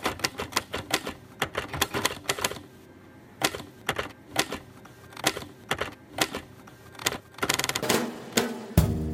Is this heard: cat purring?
no